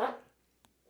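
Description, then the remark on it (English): A single sharp sneeze bursts out loudly and fades within a fraction of a second, followed by a faint brief click and near silence. No one speaks. “God bless you. Pardon me.”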